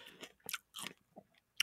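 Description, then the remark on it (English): Wet chewing and biting noises of someone eating a strawberry on mic, a few moist crunchy bursts with short pauses between, loud with no talking. “But no, I know that our listeners like to hear us eating on mic. Mm-hmm. They like to hear us slurping up the strawberry.”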